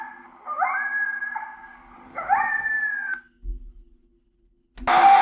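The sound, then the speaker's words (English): Two long, wavering howls, a location call from three coyotes in the open air on a bright sunny day, rise and hold at a steady mid pitch, each sliding up at the start, followed by a low thump and a sudden burst of harsher, noisy sound at the end. “That's a coyote location call.”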